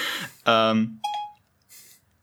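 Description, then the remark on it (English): A brief voice saying "hey Siri" gives way to a short, bright electronic chime, a quick two-part tonal blip as Siri activates, followed by a faint soft rustle. “And then it triggered Siri.”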